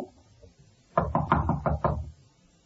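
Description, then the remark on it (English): A quick series of about six firm knocks on the door of a room at the end of a hall, evenly paced over roughly a second, fairly loud, with quiet before and after and no voices. “Knock again.”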